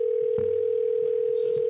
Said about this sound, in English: All right, I'm trying to call him here. It's ringing. I mean, obviously the phone is working.